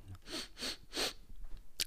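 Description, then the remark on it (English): Three loud, exaggerated sniffs in quick, even succession, followed by a brief pause and one more short, sharp sniff. No one speaks. “The voices you're hearing are my co-host, ….”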